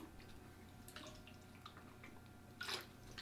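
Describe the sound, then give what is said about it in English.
Water splashes and trickles into a container, a soft, steady liquid sound with small drips, ending in a brighter gush near the end. “So next one is, get some water here.”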